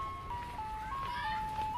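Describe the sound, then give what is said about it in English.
A tinkling ice cream truck jingle, from a truck pulled up in a park on the outskirts of downtown, plays a simple stepwise melody of bright, bell-like tones over a low rumbling background, steady. “In a park on the outskirts of downtown, Professor Nasty and Philip had just pulled up in their ice cream truck.”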